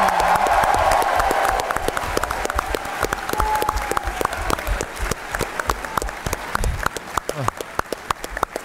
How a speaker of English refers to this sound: Yeah, and let's have a final round of applause for our ultimate hard-netting champion,